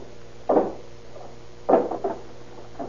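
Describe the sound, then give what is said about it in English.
A hammer strikes a door to force it open, with two heavy, dull blows about a second apart, followed by a lighter knock, with no talking and a low hum underneath. “Go on, give me that hammer.”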